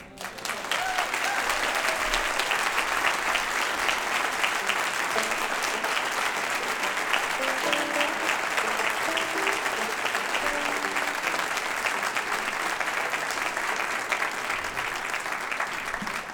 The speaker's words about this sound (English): Do you like the sound of applause?